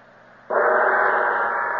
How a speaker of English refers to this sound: Sound the gong there, Speed. That will call the guards.